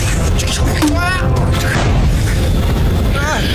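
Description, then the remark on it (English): A video game grenade explosion booms loudly, its deep low rumble filling the whole few seconds while people talk excitedly over the noise. “Come on. Get up. Come on. Grenade.”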